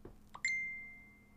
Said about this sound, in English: My mom just messaged me, so sorry if you thought that was your phone.